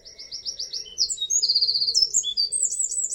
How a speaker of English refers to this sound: Let's sort of change it up a little bit, because the next bird on our list is the wren. So can we just hear what a wren sounds like?